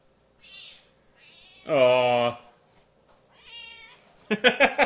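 A female cat meows several times, one loud drawn-out meow standing out among shorter, softer ones, ending with a quick burst of clipped, chirpy calls.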